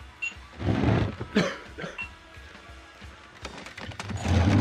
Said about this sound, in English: And we're going to need that clip of awkward coughing, chairs being skittishly scraped, etc.